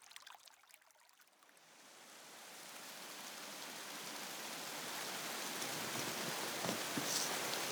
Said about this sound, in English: approaching Dob Gill, which is a great spout of water coming under a bridge from the lakeside road